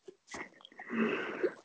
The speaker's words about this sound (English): I'm so sorry. I started blowing my nose.